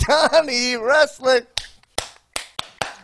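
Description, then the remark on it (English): After a drawn-out, sing-song voice, one person claps for himself alone about five times: sharp, crisp smacks at a slightly uneven pace with brief silences between. “Clapping for myself to make up for computer lag.”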